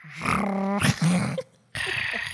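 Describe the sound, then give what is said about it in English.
A person imitates a quiet dog growl, a dog boofing quietly, making low, rumbly throat sounds in a few short bursts, with a brief pause before a final breathy grumble. “They just, like, boof so quietly because they know they're not supposed to.”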